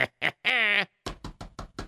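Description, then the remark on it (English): A brief vocal sound gives way to five quick, sharp knocks on a man's door, evenly spaced in a steady rhythm, fairly loud. “Let me knock on the guy's door.”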